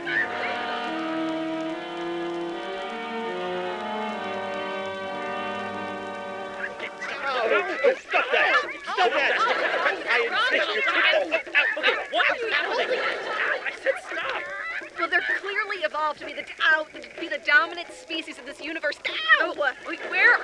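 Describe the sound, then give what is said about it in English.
A steady, droning tone gives way to a loud chorus of chickens carrying spears on an island, clucking and squawking over one another, the busy chatter continuing without pause. “Chickens! With spears. Chickens with spears.”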